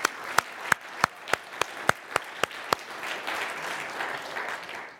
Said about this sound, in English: You, go ahead, we can applaud the Lord for that.